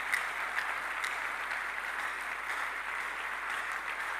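An audience claps steadily for several seconds, a dense, even wash of many hands with crisp individual smacks flickering through, holding at a constant moderate loudness without pause.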